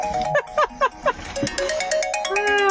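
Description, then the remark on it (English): A studio telephone line rings with a clear, melodic electronic tune of quick repeating notes that rises and sustains, with no talking over it. “The studio line is ringing.”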